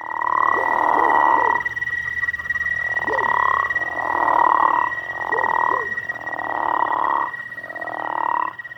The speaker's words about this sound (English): Oh, and I want to thank Jeremy Schumacher for letting me use his crawfish frog sound recording for this episode.